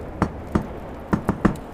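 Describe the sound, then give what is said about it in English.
Six knocks on a wooden door off a hallway in two uneven clusters: two spaced raps, a pause, then four quicker ones, fairly loud over a faint background hiss. “Knocks on the door.”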